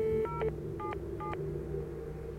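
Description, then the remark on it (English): Three short telephone keypad dialing tones beep in quick succession as someone dials 911 on a home landline phone, each a clean dual-pitched blip, with the first one longer, over a low steady background hum. “I grabbed the phone and called 911.”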